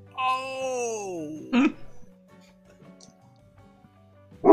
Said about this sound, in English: Oh! Hey! Good doggy.